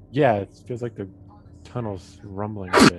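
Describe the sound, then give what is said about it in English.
A man speaks briefly, then a single sharp, explosive sneeze bursts out loud right at the end, cutting through the talk. “Bless you.”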